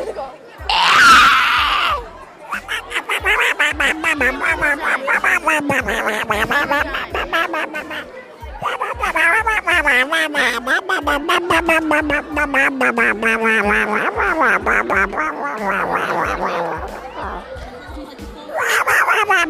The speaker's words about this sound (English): Welcome to the 1 minute and 25 seconds of just me screaming.